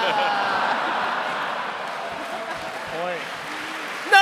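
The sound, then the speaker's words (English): A large American audience boos loudly and steadily at a mention of Brexit for several seconds, a dense roar of voices with a few individual shouts rising out of it and a sharp yell at the very end. “Hey, I will say, they booed, but they're still very passionate about the subject.”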